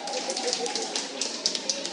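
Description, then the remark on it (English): Audience applause in a restaurant taken over by a group of runners, for their 71-year-old oldest male runner: a dense, steady patter of many hands clapping at once, sustained for the whole two seconds, with a murmur of voices blended underneath. “Can you give you a round of applause?”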